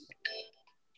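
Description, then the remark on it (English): A mobile phone that was not on silent rings briefly with an incoming call from the owner's son, a short electronic melody of bright tones that swells for a moment and then fades, fairly quiet. “phone that apparently wasn't on silent.”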